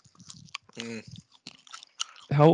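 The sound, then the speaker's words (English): Loud, close-up chewing with wet smacks and crunchy clicks in an irregular rhythm, broken by a couple of short hummed voice sounds. “Okay, dude, finish the chewing.”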